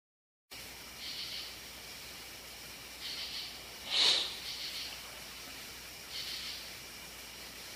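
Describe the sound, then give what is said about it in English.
A person sniffles several times at uneven intervals over a steady background hiss, with one sharper, louder sniff near the middle. No one speaks. “That was me sniffling, sorry.”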